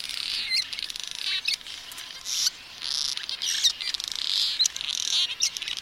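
Many cliff swallows chatter together in a busy colony, a dense continuous wash of high chirps and squeaky calls overlapping throughout, with no voices present.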